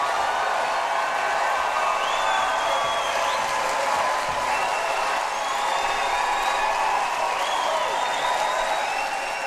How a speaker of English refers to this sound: The audience on its feet and rapturous applause